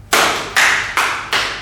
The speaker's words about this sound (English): Now clap your hands.